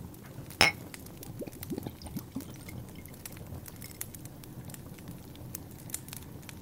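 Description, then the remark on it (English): A purple-colored drink is poured into a glass right at the microphone: a sharp clink of glass at the start, then a steady trickling pour with fine fizzing crackles over several seconds, with no voices. “Let me put this pour right on mic.”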